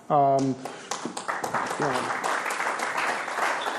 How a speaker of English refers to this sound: June 23rd, smattering of applause.